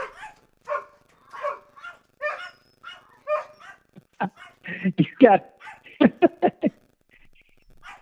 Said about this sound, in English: Yeah, my dog in the backyard howl all the time. Sorry about that.